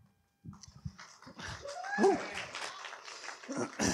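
An audience applauds and cheers, celebrating friends, a dense wash of clapping that swells and stays busy throughout, with a rising whoop or shout cutting through partway along.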